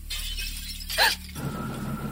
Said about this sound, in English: I'm halfway to the bathroom when the sound of glass breaking downstairs freezes me in place.